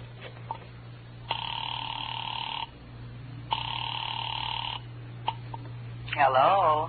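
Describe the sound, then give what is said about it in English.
A telephone line rings twice after a number is dialed, steady electronic ringback tones with pauses between, heard over a low hum, before a voice answers at the very end. “found a phone. I dialed Bradshaw 7711 and waited.”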